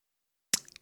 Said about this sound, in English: Sorry, just got a little bit of coffee here that I'm sipping on.